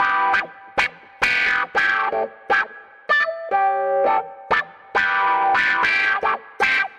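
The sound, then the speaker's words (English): A keyboard plays a choppy, funky riff of short staccato synth chords and notes, with a bright, buzzy, effect-laden tone and a couple of briefly held lower notes midway; no one speaks. “It's used for all sorts of stuff, I guess, actually, but this keyboard sound could be pretty cool with it.”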